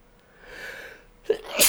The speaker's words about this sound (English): Jesus. I always love sneezing. No wonder Vince McMahon hates sneezing.